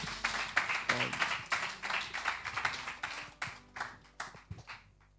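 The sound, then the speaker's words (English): A church audience claps together for Jesus Christ in a dense, steady burst of applause that thins out into a few scattered claps before fading away near the end. “Clap your hands together for Jesus Christ.”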